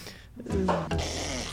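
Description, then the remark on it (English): A young girl blows a wet, sputtering raspberry pretending to fart, a buzzy, noisy burst lasting about a second, fairly loud. “And then she pretended to fart or something, like her poop.”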